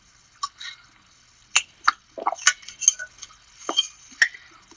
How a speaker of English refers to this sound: Dear God, dude, what's your deal? Why do you have to be so quiet? Because you're gulping water, and I could hear it on the mic extremely loud.